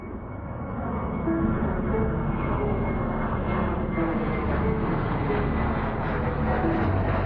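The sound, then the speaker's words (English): Engines of three airplanes flying to Foros in Crimea drone loudly overhead, a steady, dense roar with a faint whine that swells in the first second and then holds constant, with no voices. “There are three planes now racing to Foro's Crimea.”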